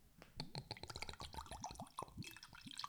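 Whiskey glugs out of a bottle in a quick series of hollow, bubbling gulps, fairly quiet, with the pour's liquid trickle running underneath.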